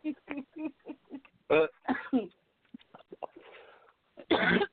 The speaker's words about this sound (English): I'm sorry. Coughing too much.